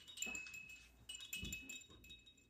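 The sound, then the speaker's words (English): A dog named Honey gnaws on a hard nylon bone close by, with irregular scraping and clicking bites and a faint high-pitched whine running underneath, all fairly quiet. “It's that nylon bone she's chewing.”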